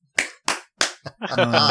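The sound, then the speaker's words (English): Three sharp hand claps, made as an editing marker, land in a quick, even rhythm, each ringing briefly before the next, and then a voice begins speaking right after the last one. “Clap three times.”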